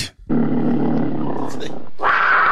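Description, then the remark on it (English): A loud, sustained tiger-like roar lasting over a second, apparently a human voice imitating it, followed by a shorter, harsher growling burst. “Do you have a tiger sound?”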